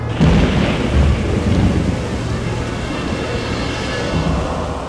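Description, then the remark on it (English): Deep thunder from an approaching storm in the woods rolls steadily for several seconds, a loud, sustained rumble with a heavy low-end swell near the start, backed by a constant wash of rain-like hiss. “There's a storm coming.”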